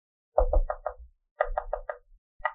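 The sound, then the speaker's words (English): Sharp knocks on a door with a dagger, a quick burst of four raps, then three more after a pause, and a single final rap, loud with no talking. “I'm going to use my dagger on the door.”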